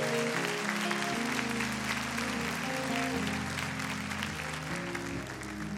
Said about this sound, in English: Now clap your hands for your neighbor and give your neighbor an applause.